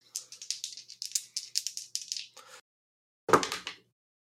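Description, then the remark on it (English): Dice are rolled for a force of will roll. They rattle and clatter for about two and a half seconds in a quick series of sharp clicks, then after a pause give a final louder knock and short skitter as they come to rest, showing eight. “Eight on the dice plus one is a nine.”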